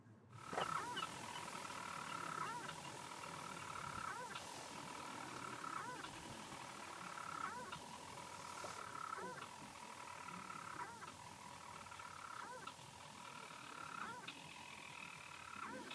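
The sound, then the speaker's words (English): Storm petrels, tiny seabirds, calling at night at a breeding colony within an Iron Age fortress on Mousa, Shetland, where they nest under boulder rubble: a continuous, steady churring purr broken by sharp hiccup-like notes that recur every second or two, layered over faint overlapping calls. “So the sound we're listening to is a storm petrel.”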